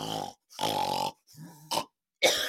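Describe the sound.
A person imitates loud snoring with four rough, throaty, grunting bursts separated by short pauses, with no other talking.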